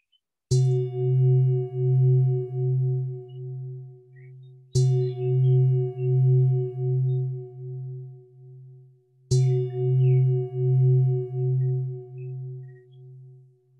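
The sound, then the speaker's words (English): Three meditation bell strikes, evenly spaced about four seconds apart, each with a bright attack and a long, low, wavering hum that pulses as it rings out. No voices. “So we may hear three sounds of the bell to just give us a chance to tune in to our breathing.”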